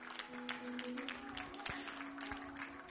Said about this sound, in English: Come on and give God a clap offering for that this morning.